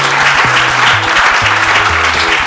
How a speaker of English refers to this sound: Okay, wonderful. Well, thank you very much. Can we give our panelists a round of applause, please?